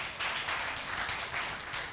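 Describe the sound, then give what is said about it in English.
One person claps steadily at a quick, even pace, about three or four claps a second, after a speaker asks somebody to clap. The claps are fairly soft, with no voices over them. “I got one clap in the room.”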